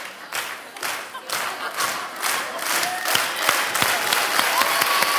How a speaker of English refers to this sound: So I want to give a hand clap to you guys. Great job. Great job.